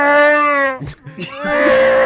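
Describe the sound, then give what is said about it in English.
A voice imitates Chewbacca's Wookiee growl: a loud, drawn-out wavering howl, a short guttural break, then another long moaning roar, on its own. “Chewbacca, apparently.”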